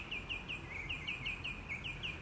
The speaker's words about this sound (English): God, listen to that bird song.